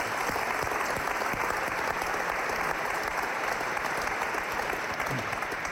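Steady audience applause fills the whole stretch, a dense, even wash of many hands clapping at a constant loud level with no voices standing out.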